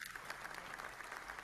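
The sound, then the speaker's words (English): A steady burst of applause, many hands clapping in a dense, even patter at moderate volume with no voices over it, greeting a co-host as he is welcomed. “You know, and the guy's so popular, people just follow him around so they could clap when his name's mentioned.”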